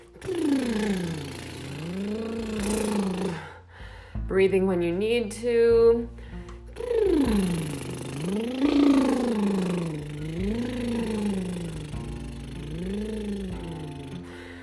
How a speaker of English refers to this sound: Lip flutters. Some people call these horse lips. And you're giving your baby a hug as you're sending that sound up. And sliding, play with sliding up and down just a little bit in your range on that lip flutter.